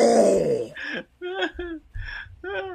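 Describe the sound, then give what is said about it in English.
A voice makes a few loud, drawn-out fart noises into a Kmart store's public-address microphone, with echo, in quick succession, each a buzzing, moaning burst with short pauses between, sounding close to the microphone. “We got a brown light special, and I just fucking unloaded into the mic. Dumped my ass into the mic.”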